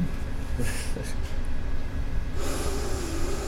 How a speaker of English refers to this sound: That's exactly what I think I've come onto something here. The mask aroma sniff test. Yeah. Because I think it's just your breath. So I'm only smelling the last beer I drank.